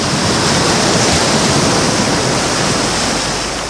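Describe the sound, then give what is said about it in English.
A wave crashes onto the deck of the Bunkum Barge, a loud rush of churning water that roars steadily for a few seconds before easing slightly at the end. No voices. “A wave rises up and crashes onto the deck of the bunkum barge.”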